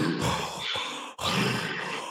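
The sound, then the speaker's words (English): A voice imitates a Wookiee's heavy, raspy breathing: two long, loud breaths in a row, each a harsh rush of air with a brief gap between them. “You know he was breathing hard too.”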